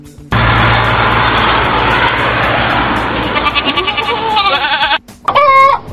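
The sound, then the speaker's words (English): A loud, dense chorus of goats bleating together, wavering cries overlapping continuously, then a brief pause before one sharp bleat rings out alone. “Damn goats are everywhere.”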